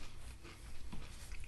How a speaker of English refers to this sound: And we're trying. We're munching.